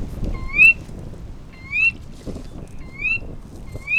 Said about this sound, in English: That's a sora rail, a small bird about the size of a robin. It's one of many different kinds of rails. They range from about the size of a sparrow to close to the size of a chicken. They've got long, skinny feet, good for walking around marshy areas.